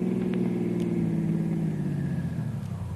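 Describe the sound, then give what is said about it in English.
A car engine hums steadily, its low drone easing down toward the end as the car slows to a stop at the end of a road. No voices are heard. “Stop the car.”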